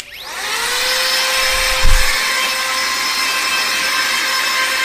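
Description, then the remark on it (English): A rechargeable handheld electric air blower whirs up from silence to a steady high-pitched motorized whine with a rushing airflow hiss, holding constant with a brief low thump midway. “It's like a little air blower, but it's, you charge it, and like, it's sick.”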